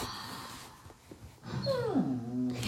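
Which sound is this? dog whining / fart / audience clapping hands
dog whining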